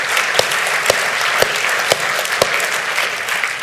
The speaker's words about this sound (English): And again, that is awesome. Let's clap for that whole group.